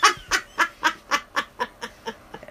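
A run of about ten quick, evenly spaced clucks from French chickens, starting loud, then trailing off softer toward the end. No talking is heard.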